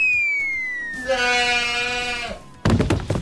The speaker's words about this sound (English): You know, I should program that to be on the keyboard as different keys, and then I could actually play a whole song with my goat sound.